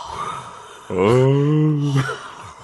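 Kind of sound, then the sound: vocal imitation, voice imitating a fart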